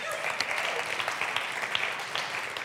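Steady applause from an audience, a dense patter of many hands clapping at an even, moderately loud level for a few seconds with no voices standing out.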